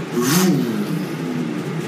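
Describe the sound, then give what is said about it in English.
An engine revs like a motorcycle, heard from inside, its pitch surging up and then settling into a steady throaty drone. It's fairly loud and continuous for about two seconds, with no voices. “Like, you hear the revving of an engine from inside, which seems strange. An engine? Like a motorcycle.”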